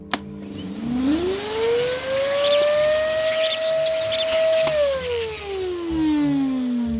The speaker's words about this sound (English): I'll vacuum up all the spiders and mites in my courtroom.